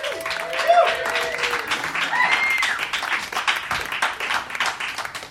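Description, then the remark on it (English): A comedy-show audience breaks into sustained applause for comedian Kiran Deol, a dense wash of clapping lasting several seconds, with a few cheers and whistles rising above it. “Kiran Deol, ladies and gentlemen, let her hear it.”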